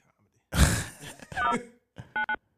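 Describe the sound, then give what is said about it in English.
Two short electronic dialing beeps of a phone making a call sound in quick succession near the end, clear, following a burst of breathy vocal noise and a brief voiced sound. “Make a call.”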